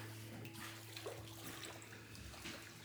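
Water sloshes and splashes continuously as a person being baptized wades down into the baptismal water, steady, with a faint low electrical hum underneath and no one speaking.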